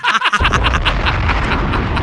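A loud bomb explosion sound effect hits after a brief lead-in, then rolls on as a deep, sustained rumble. Higher tonal, voice-like sounds run over it.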